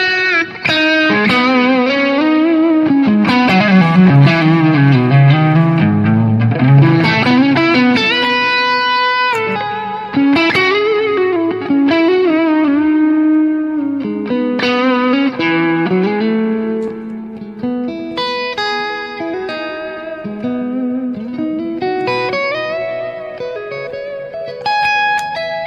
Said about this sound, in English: I love a vintage single coil tone, but of course these are a little quieter and a little hotter maybe. So, but I could still get a. Still get a bit of that chew.